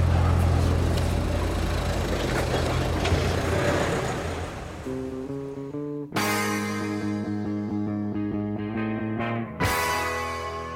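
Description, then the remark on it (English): A steady, low engine rumble fills the inside of a car, with broad road-like noise at first that gives way to a smoother, humming idle with sustained tonal layers. No one speaks. “So we're back in the car.”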